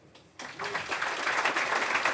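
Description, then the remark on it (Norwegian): A burst of applause for a visiting shipping analyst begins abruptly after a brief quiet moment, a dense crackle of many hands clapping that holds steady and fairly loud to the end. “Han faktisk nummer en ranket på Bloomberg, det fortjener jo nesten en applaus.”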